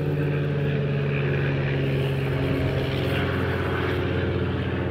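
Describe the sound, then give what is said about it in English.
A light propeller aircraft, one of several taking off, drones steadily overhead during a wild walk near the Trundle. Its engine is a loud, sustained low hum with a rough buzzing texture that holds constant throughout, with no voices. “We're now being buzzed by light aircraft on a wild walk.”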